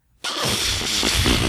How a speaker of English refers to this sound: It's not that was an elephant fart.